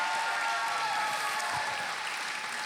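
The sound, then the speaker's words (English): A church crowd at High Praise claps and cheers to honor the leaders of the house, in a dense, continuous wash of applause that holds steady and loud throughout, with faint shouts mixed into the roar. “Will you give one more hand clap and shout for them too?”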